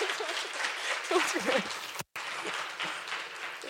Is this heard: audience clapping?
yes